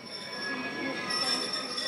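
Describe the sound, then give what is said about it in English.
A passenger train from the Donbas rolls into the station at Dnipro, Ukraine, for its 45-minute evening stop, a steady rumble of railcars with high, sustained wheel squeal as it slows, loud throughout. “The train from the Donbas pulls into the central eastern town of Dnipro for a 45-minute stop each evening.”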